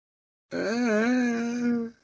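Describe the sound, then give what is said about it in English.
A person's voice imitates a monster scream: one loud, sustained, wavering howl of about a second and a half, fairly low and raspy for a scream, with no other sound around it. “Do the scream. Shows how powerful and scary the monster is.”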